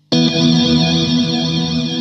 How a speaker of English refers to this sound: We have the Old Blood Noise Procession reverb, which at the moment is set on the flange tail.